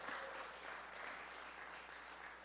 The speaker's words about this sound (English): That's a good place to clap your hands. Amen.